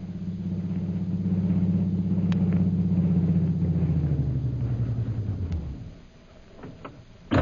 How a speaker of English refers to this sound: Meanwhile, back in Mandalay, a taxi drives onto the flying field, its shades closely drawn and its lights dimmed.